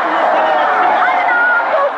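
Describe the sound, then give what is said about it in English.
A dense crowd of violent demonstrators in Israel shouting "Blood money, guilt money" together as stones are thrown at the parliament building, a steady roar of overlapping voices with a few higher cries rising above it, loud and continuous throughout. “Blood money. Guilt money, screamed the crowd, as stones were thrown at the parliament building.”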